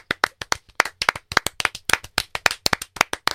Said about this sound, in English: Remember, no clapping whatsoever. Yeah. While we read that, we can get all our clapping out right now.